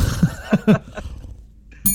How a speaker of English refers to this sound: Do you want to go first, or do I want to go first, or do I want to hit the gong? Because I just hit the gong. Okay. Hit the gong.